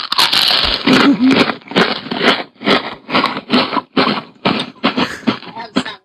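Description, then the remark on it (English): Loud crunchy chewing of dry pork, played from a sound effect board, with about a dozen rhythmic crackling bites in steady succession, no voices. “But it did sound like you when you were chewing.”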